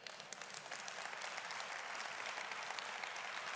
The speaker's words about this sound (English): Listen, that clapping is for the King of Kings, because he's the one who deserves it.